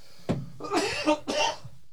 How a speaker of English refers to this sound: Excuse me. Need to apparently get a grandma cough button. I know it's bad now.